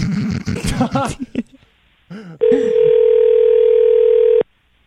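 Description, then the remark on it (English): A single long, steady electronic ringing tone of an outgoing phone call to the speaker's sister sounds loud for about two seconds, preceded by a brief stretch of voice and a short pause. “Answer your phone.”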